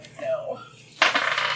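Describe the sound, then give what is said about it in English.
A die clatters and rattles across a hard tabletop in a quick burst of bright clicks, following a brief faint ringing tone, rolled for an Arcana check in a tabletop game and landing a critical fail. “I'm not rolling this dice ever again.”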